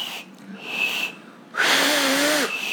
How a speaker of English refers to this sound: Ooh, I almost learned this week how to do this. She's doing a whistle through her fingies.